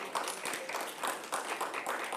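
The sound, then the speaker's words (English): A crowd gives a praise clap to God for the United States of America during a sermon: a steady, dense patter of many hands, sustained and fairly even in loudness throughout, with faint cheering or voices mixed underneath. “Can we give God a praise clap for the United States of America?”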